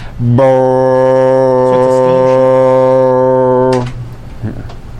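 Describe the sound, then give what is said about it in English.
A ship's foghorn lets out one long, deep, steady blast lasting several seconds, loud, then cuts off, leaving a quiet tail with faint background noise; the ship is sailing up to a dock and the horn sounds out over a town. “just above the ocean, and slowly descend down into the water and begin sailing up to the edge of the dock, and the foghorn sounds out over the entire town.”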